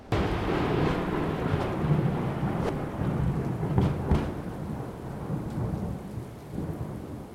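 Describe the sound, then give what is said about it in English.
Steady heavy rain fills the scene with a deep, continuous rumble of thunder rolling underneath, a few sharper crackles cutting through. No voices, just the sustained storm throughout. “Lightning struck again, illuminating the clouds.”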